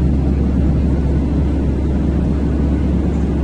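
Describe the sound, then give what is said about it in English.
A steady, low rumbling roar of real aeroplanes flying past outside a window, constant in loudness and heavy in the bass, with no voices and no clear rise or fade. “You probably heard actual aeroplanes going outside the window.”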